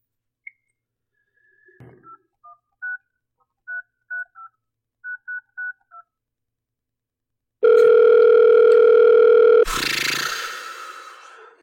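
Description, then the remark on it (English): A series of short phone keypad beeps in quick groups as a number is dialed to a home landline, followed by one loud, steady ringing tone on the line, then a burst of rough noise. “So I'm just going to give him a quick call and see what the hell happened.”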